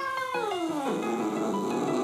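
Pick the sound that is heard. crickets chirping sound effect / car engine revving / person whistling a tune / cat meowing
cat meowing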